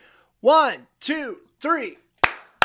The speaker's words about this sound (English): Let's do the clap.